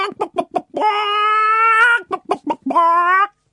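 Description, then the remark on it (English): A chicken clucks in a quick series of short bursts, breaks into two long drawn-out squawks, then clucks again, loud and clear with no voices. “There's a chicken.”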